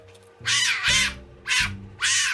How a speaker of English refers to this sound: In particular, there was this little fennec fox that's a desert fox. It just screamed and wailed and said everything it had to say at high pitches.